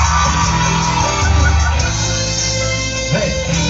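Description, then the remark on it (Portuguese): A loud, dense wall of Flamengo fans shouting and cheering together, sustained for a few seconds with voices blending into a continuous roar that swells slightly near the end. “Cadê o gritinho do Flamengo?”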